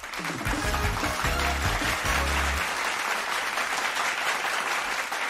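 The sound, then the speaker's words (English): Sustained audience applause, a dense, steady wash of many hands clapping at an even loudness throughout, with a low droning tone underneath for the first half before it drops away. “Always an excessively long applause from our very devoted audience, but I'm glad for their adoration.”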